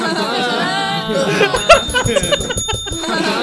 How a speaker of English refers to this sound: I love that you have the bell. We need more noise making.